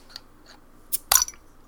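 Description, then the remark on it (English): A beer being opened: a few faint taps, then a sharp click and a loud burst of hissing fizz lasting a fraction of a second before fading out. “Let's open our first beer.”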